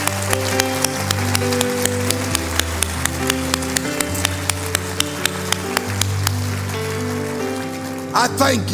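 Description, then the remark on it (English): An audience at a church service claps hands in praise of God in a steady, even beat, roughly two claps per second, over sustained organ-like chords, with a brief burst of voices near the end. “And now let's clap our hands to the One, the only One that is worthy.”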